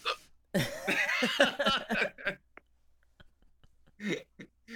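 A loud, drawn-out burp croaks for about two seconds, its pitch wobbling, then a few short, softer vocal bursts follow after a pause.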